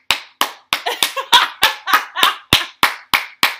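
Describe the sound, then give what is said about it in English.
A steady run of about a dozen sharp hand claps, fairly loud, with a brief quicker flurry partway through; no voices. “Not clapping all heart. Look at the sound waves.”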